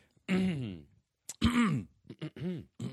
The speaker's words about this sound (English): Was it that big of a number you have to cough before you say it?